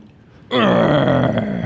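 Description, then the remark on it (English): A man lets out a low, strained grunt as he lifts a heavy fish, starting abruptly and holding for about a second, rough and voiced. No words are spoken. “He grunted when he lifted up the fish.”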